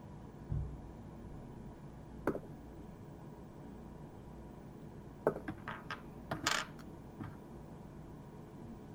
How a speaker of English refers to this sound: It's a lot of dice.